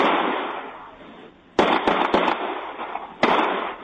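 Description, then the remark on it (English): Gunshots ring out in an exchange between a gunman and police officers, recorded on police body camera footage: a quick volley of about four sharp, loud cracks, then a brief pause and one more shot, over a steady background hiss. “But instead of dropping it, he opened fire on the police officers. One police officer returned fire.”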